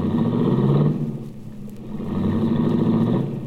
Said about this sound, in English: I watched Cookie's baby blue convertible cut out into the traffic.